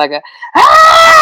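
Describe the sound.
A voice imitates two loud yells heard at a wedding while photos were being taken: a short, clipped shout followed by a longer, sustained piercing scream that holds steady and loud to the end.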